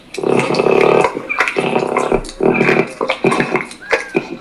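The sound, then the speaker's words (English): Peccaries vocalize in a series of harsh, raspy grunts and squealing calls, coming in uneven bursts with brief pauses between them. The calls are fairly loud, and no one speaks. “Peccaries look like small, wild pigs.”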